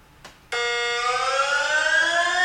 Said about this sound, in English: First, they count down, and then it starts the alarm, and then it just resets. Oh, the countdown's creepy.